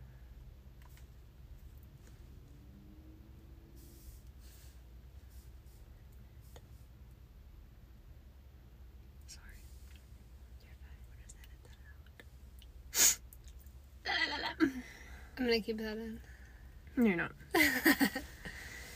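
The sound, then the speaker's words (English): A single sharp sneeze breaks a long, quiet stretch of faint background hiss, and a person starts talking right after it. “Bless you.”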